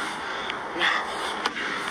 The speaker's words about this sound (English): Oh yeah, that's all I'm hearing. Yeah, he's breathing very hard. And it's picking up all of this.